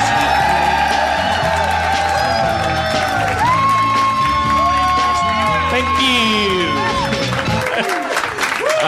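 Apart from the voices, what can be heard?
audience cheering and applauding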